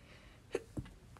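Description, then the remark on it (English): A stifled sneeze comes as two quick, soft bursts in close succession, fairly muted, with no talking around it. “Bless you.”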